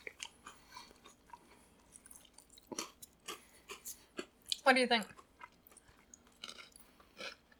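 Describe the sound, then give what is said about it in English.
Crisp crunching of potato chips being munched, with irregular bites and chews scattered throughout, while a couple of people briefly murmur and talk between mouthfuls. “I am kind of like self-conscious about like how much the lavaliers will pick up about us munching and crunching.”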